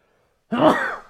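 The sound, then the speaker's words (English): A single sneeze bursts out after a short silence, sudden, loud and breathy, then trails off over about half a second. No one speaks. “Sorry, had to sneeze.”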